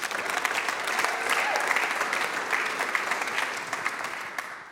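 A crowd gives a round of applause for a woman coming up, clapping steadily for several seconds, a dense, even patter of many hands that stays loud throughout and tapers slightly at the end.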